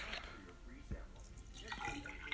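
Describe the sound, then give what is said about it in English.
Water runs from a tap in a short, steady stream with some splashing and dripping, while a voice murmurs faintly underneath. “Oh, need some water.”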